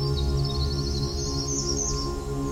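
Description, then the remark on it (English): A winter wren, a tiny brown songbird, pours out its song in a continuous, rapid stream of high, bubbly trills. A steady low hum runs underneath, and no one speaks. “Not only is this bird disproportionately loud, but its bubbly cascading songs are amongst the most lengthy, lasting anywhere between 5 to 10 seconds per song.”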